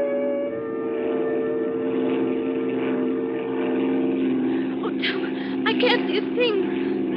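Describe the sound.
A small propeller plane's engine drones steadily and loudly in flight, coming in to land, a constant buzzing hum, with brief voices rising over it near the end.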